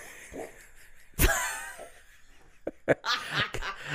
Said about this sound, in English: I couldn't. You made me laugh fart. I laugh fart often,